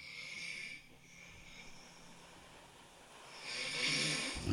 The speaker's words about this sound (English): Should we play the video of me snoring?